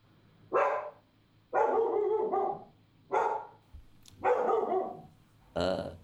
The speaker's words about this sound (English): Let me just shut the dog up.